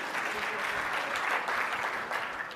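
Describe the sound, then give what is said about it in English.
An audience applauds steadily, a dense wash of many hands clapping at an even, sustained loudness for a few seconds with no voices standing out. “Clap that up, because it's a real”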